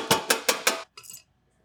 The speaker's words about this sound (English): It's hot. We're going to go on the table. Voila. And then usually to chill it, we pour it on a tray.